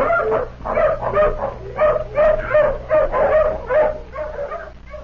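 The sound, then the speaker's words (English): A tracking hound that has lost a scent trail at the foot of a cliff barks and yips in quick, excited bursts mixed with whining whimpers, loud, the calls repeating unevenly over a low steady background hum. “Dog's lost the trail again at the foot of this cliff.”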